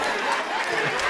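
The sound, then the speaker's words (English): An audience claps steadily, a dense wash of many hands holding an even, loud level for about a second, with a murmur of crowd voices blended underneath. “You are clapping, but if you have not realized I'm describing you and God.”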